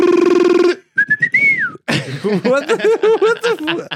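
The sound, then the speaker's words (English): A person whistles a quick imitation of an ibis call: a buzzy low tone, a few short chirps, then a rising, sliding whistle, followed by a burst of laughter and animated chatter. “That was like an Ibis call.”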